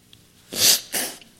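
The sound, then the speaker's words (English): Someone blows their nose in two quick, forceful bursts, a longer hissing blast followed by a second shorter one, with no talking. “Blow my nose, since that always happens.”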